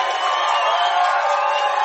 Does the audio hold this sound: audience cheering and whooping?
yes